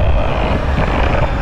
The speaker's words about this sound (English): In its dumb discomfort, the dinosaur god has begun trampling the humbled. They scatter like fleas, but most are crushed or engulfed in the great explosions of sand that the beast is kicking up.